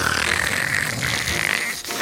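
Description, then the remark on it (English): A loud, rasping snore from Archibald Asparagus, asleep in his bedroom, drawn out for about two seconds, with a buzzy, rattling tone and a brief catch near the end. No one speaks. “He's asleep. And he snores. A lot.”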